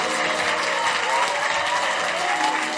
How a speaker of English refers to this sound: You may go back to your seats. Clap for them as they go back. Are you tired of clapping?